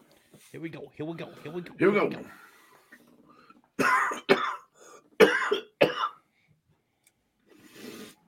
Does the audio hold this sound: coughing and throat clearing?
yes